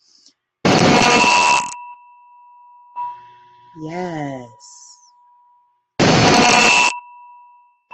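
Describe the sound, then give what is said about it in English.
A meditation gong is struck twice, several seconds apart, each loud hit followed by a long, steady shimmering hum that slowly fades. A voice says a brief word between strikes. “And we're going to just, I want you to feel yourself aligning and stretching with each vibration, each gong, okay?”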